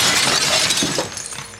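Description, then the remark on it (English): A glass window pane is punched out by someone breaking into an old house and shatters in a loud crash, bright tinkling shards trailing off over a second or so, with no voices. “now they are breaking into his old house when Tucker punches the glass out of the pane”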